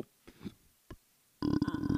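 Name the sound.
deep burp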